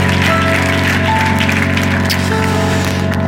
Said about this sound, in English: One more time, church, let's welcome them with a hand clap. Thank you all for becoming a part of our church.